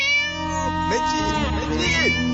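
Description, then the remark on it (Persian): A professor imitates a cat, drawing out a couple of wavering, nasal meows that rise and fall in pitch, loud. “استاد الان تو سی سی اوه، داره صدای گربه در میاره.”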